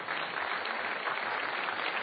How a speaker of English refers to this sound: I just want to ask you to rise and give you a round of applause for making this possible.